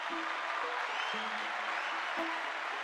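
A steady round of applause from a group: dense, hissy clapping that holds at an even level throughout, with a faint low tone sounding underneath at moments. No one speaks.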